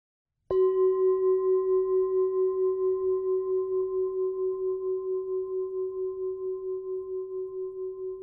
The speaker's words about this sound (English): When you hear the sound of the bell, go ahead and close your eyes if you wish.